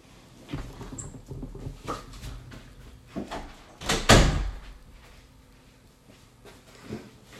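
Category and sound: household object, door being shut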